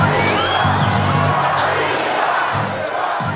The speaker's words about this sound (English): There were Rocky Sucks chants. Yeah, hit the soundbite.